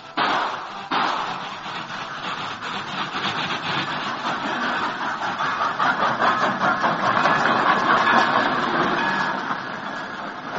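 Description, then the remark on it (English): A train approaches past big boulders near the entrance to a cut and comes to a stop, rumbling steadily with a rhythmic mechanical chugging, growing louder over several seconds before easing slightly near the end as it slows. No voices are heard. “From their hiding place behind the boulders, not far from the entrance to the cut, the outlaws waited tensely for the explosion as the train approached.”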